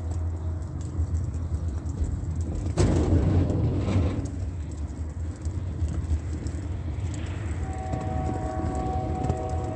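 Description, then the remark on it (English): A Union Pacific freight train rumbles past at 8:40 p.m. with a steady, heavy low roar that surges louder for a moment, then settles, with a thin metallic whine rising faintly near the end. “First of all, you're not going to hear it because Amtrak doesn't run a passenger train. Union Pacific is using it literally for the engagement in ceaseless terrorism.”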